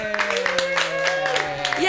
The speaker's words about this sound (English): All right, sounding good. It's a lot of clapping.